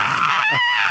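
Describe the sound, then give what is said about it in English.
A Robot Chicken screaming gummy bear figure from Bear Trap, with a speaker in its sound base, lets out a shrill, high-pitched, loud scream for about a second, its pitch wavering partway through, with no talking over it. “Is the quote-unquote hard-to-find robot chicken gummy bear in Bear Trap.”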